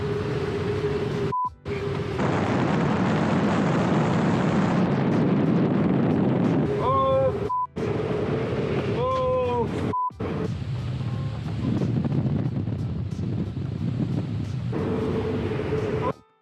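Loud, steady wind rush fills a small plane's cockpit after an engine failure, with no engine drone, as the pilot opens his door, broken by a few brief warbling warning tones and short abrupt dropouts in the sound.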